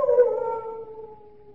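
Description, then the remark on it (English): A large dog lets out a long, sustained howl, its tone sliding slowly downward and fading over a second and a half, with no voices; one of the many large dogs kept at the Chateau d'Azay. “Only the dogs, monsieur. They keep many dogs, large dogs at the Chateau d'Azay.”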